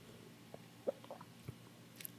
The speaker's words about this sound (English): Well, I'll tell you guys what. I'm going to take a big old sip.